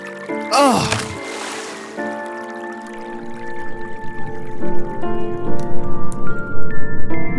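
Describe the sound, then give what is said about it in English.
A sudden splashing whoosh of water as the Jordan River is struck with a rolled-up mantle, then a steady rushing, churning flow that swells louder over several seconds beneath sustained, shimmering musical tones. “Let me take off my mantle and roll it up, and I will strike the river.”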